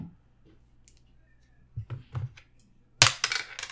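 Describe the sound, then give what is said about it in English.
A penny is thrown at a glass cup and misses, clattering onto a hard surface with a few quick metallic clinks, then a bright, loud ringing impact and bouncing jingles, over a faint low hum. “I have a penny right in front of me.”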